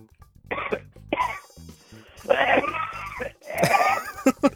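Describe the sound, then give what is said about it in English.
Several rough, throaty coughs and throat-clearing bursts from a person in a voicemail message, fairly loud, coming in irregular clusters with short pauses between them, slightly muffled like a phone recording. “that was just somebody coughing.”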